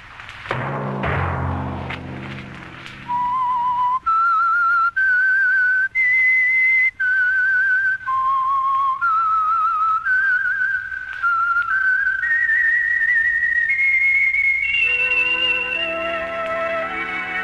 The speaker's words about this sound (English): Whistle be your signal for the Signal Oil program, The Whistler, each Sunday night at this same time.